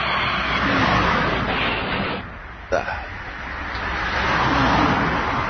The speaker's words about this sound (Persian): ماشینا همینجور دارن میان و میرم.